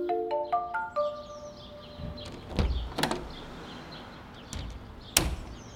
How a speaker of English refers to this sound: It's early on a Saturday morning, and a 12-year-old boy named Werner is sneaking out the back door.